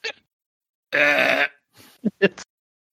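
A single loud, throaty belch lasting about half a second, close to the mic, followed by a few short mumbled vocal sounds.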